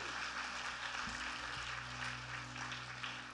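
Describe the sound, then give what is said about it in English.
A large church audience claps and cheers steadily, a dense, sustained wash of applause with no break, full for the whole stretch. “Come on, church, the heavens are roaring. Come on, let's cheer them.”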